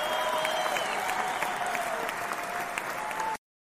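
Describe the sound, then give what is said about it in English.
A steady burst of applause for the virtual studio audience of a broadcast streaming on CTR Media Network, many hands clapping in a dense, even wash for about three seconds before cutting off abruptly. No voices are heard. “But before we do that, let me just give a round of applause for the virtual studio audience.”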